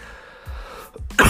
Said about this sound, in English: Sorry, I'm still trying to get over this cough.